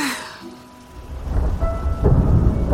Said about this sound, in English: No way! A thunderstorm? Whoa, check out that storm cloud, Mr. Snuggles. It's coming this way.